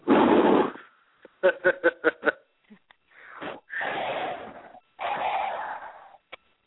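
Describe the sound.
Someone performs exaggerated, creepy heavy breathing into a phone: a loud rasping exhale, a quick run of sharp gasping hitches, then two long, drawn-out wheezy breaths.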